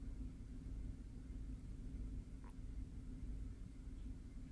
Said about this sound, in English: It's thundering outside. It's sunny. Oh, that was my washing machine.